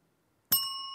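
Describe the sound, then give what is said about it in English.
A single bright quiz ring-in bell ding strikes sharply after a moment of silence, its clear metallic tone ringing on and sustaining steadily to the end. “I like the idea of just ringing in with complaints.”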